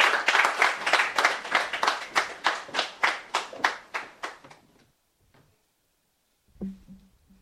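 Steady rhythmic clapping from an audience welcoming a speaker from Dalex Finance as she comes up, about three claps per second, gradually fading over five seconds before stopping, followed by quiet and a brief low thump near the end.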